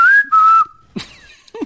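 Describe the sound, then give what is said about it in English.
A person whistles an imitation of a finch's song: a steady, clear high note broken by a brief gap, followed by a few quick, chirpy rising and falling whistles. “What's a finch sound like?”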